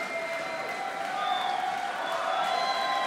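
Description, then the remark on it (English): A large concert crowd at the 930 Club applauds and cheers steadily throughout, a dense wash of clapping with scattered shouts and whistles rising above it, sustained for the full few seconds. “is applauding the crowd”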